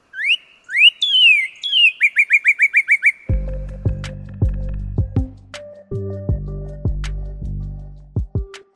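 A bird sings clearly and up close: rising whistled notes, then a quick run of about eight bright, evenly spaced chirps, before low plucked musical notes take over for the rest.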